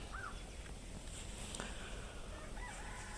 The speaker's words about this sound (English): 360 audio, and you should be able to hear all the birds around too.